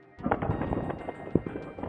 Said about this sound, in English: Ha! It's working! The door is opening!